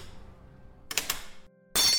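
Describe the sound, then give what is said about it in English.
A large serving dish teeters on the edge of a table, falls and smashes: a sharp breaking burst with ringing, scattering shards, then another loud, harsh crash right at the end. “The loud smashing noise. I think a serving dish fell.”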